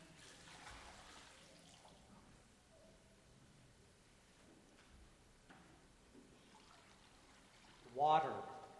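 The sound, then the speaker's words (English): Water is poured into a font during a church service, a soft, steady trickle over a quiet murmur, swelling into a brief louder splashing pour near the end. “Water. We praise you, O God, for water, Lake Michigan and the Chicago River, the rain that nourishes animals and plants, the water for drinking and bathing.”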